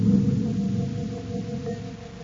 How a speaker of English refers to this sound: A few moments later, the Terra 5 is joined to the cruiser by the magnetic coupler.